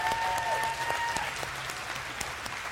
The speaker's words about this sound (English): But I thought today, since we don't normally get to tell them thank you because we don't see them, if we could just give them a round of applause for doing that and keeping this thing going.